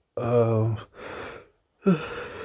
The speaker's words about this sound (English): I know I'm yawning a lot, but that's not a sign of me being sleepy. It's just a sign of me being a bit too comfortable and needing to change positions in the bed.